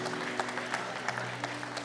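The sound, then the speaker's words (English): An audience at a morning church service claps steadily in a round of applause for Jesus, a dense wash of many hands with sharper individual claps popping out, while a low sustained musical tone hums underneath. “Come on, can we give Jesus one more round of applause this morning?”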